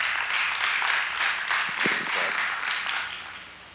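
A crowd at HFF applauds steadily for a few seconds to welcome a guest pastor from Nashville, Tennessee, a dense, even wash of many hands clapping at once, with a brief vocal cheer rising out of it midway before it tapers slightly.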